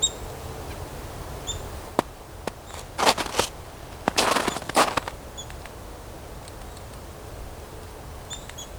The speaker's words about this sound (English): I hear that pecking there. That's a chickadee pecking at a plant with a bulge in it. That bulge will have a larva inside. If it is what I think it is. If it's a goldenrod gall.